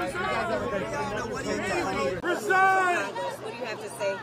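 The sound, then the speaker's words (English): Many voices of a speaker's colleagues overlap in a chamber in a loud, continuous babble of chatter, with raised, screaming voices cutting through in the second half. “Like I said, if I could understand you over my colleagues screaming here, the reality is New Yorkers need better!”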